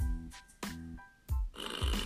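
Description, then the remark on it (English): A toy button, pressed by a child, plays a fart sound effect, a series of low, buzzy raspberry-like blasts in quick succession, fairly loud, with no one talking over it. “That's still a Mommy. Show me a Daddy one. Daddy fart.”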